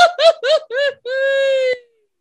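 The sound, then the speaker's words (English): A goofy scream sound effect: a cartoonish voice yelps four quick rising-falling bursts, then holds one long wavering wail before cutting off, loud with no talking. “Pull up my goofy scream there.”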